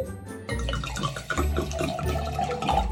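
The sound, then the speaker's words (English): Vodka pours steadily into a glass ball jar, a full gurgling splash that starts after a brief quiet moment and runs continuously to the end, with no talking. “Just it, like that, when he's pouring all that vodka in the ball jar, it like gives me anxiety because like I feel like this guy's gonna drink himself to death, dude.”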